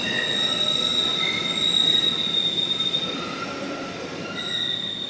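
Metal train wheels screech against steel rails in long, piercing tones over a steady rumble of a rolling rail car, loud, with no voices.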